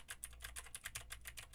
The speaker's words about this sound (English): Now I'm typing on a keyboard with Gateron Blue switches to see how much of my voice versus how much of the keyboard it picks up.